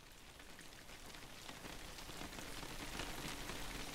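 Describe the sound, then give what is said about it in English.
Steady rain patters against a window, large droplets hitting and sliding down the glass panes: a dense hiss of drops with scattered sharper taps, growing slightly heavier toward the end. No voices. “Large droplets of water began hitting the window and sliding down the glass panes like little beads of nervous sweat.”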